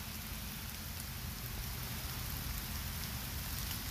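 Steady rain falls, a dense, continuous pitter-patter of drops on a surface with no pauses or voices, soft overall but filling the whole soundscape evenly.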